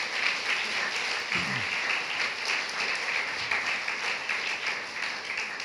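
A church crowd applauds in a steady, dense wash of clapping that holds at an even level throughout, with no voices standing out above it.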